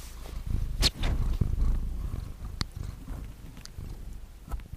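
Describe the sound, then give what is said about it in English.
A cat purring very close to the microphone, a steady low rumbling drone with a few soft clicks and rustles, no talking. “You even hear that? He's like purring into the microphone.”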